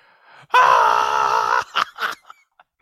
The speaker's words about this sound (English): He literally screams.